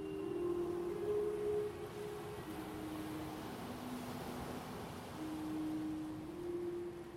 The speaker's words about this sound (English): Listen to the sea. It's so soothing. No. Listen to it. Listen to the sea.